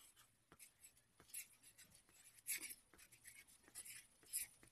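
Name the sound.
writing on paper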